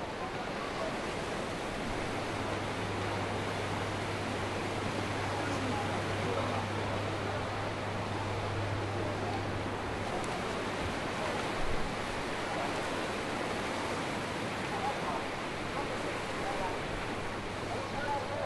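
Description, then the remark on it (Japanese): Tsunami floodwater surges through a port town in Japan in a loud, unbroken roar of rushing water, continuous, with a low steady hum underneath for the first several seconds. “Tsunami hits Japan port town”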